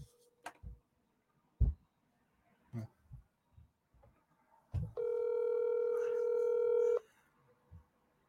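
Several sharp, scattered clicks of phone keys being pressed to call someone, then a steady electronic ringing tone holds for about two seconds, clear, followed by a faint tap.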